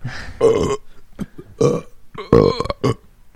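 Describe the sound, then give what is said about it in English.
A series of loud, drawn-out burps, about four in quick succession, each rumbling and croaky with strong low resonance, with brief pauses between them. “we're going to edit that out. Welcome to Burp A Lot.”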